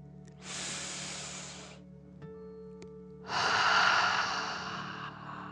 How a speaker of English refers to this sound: remember to breathe in through your nose, filling up your chest and belly, and then out, pretending you are breathing fire. Deep breath in and out.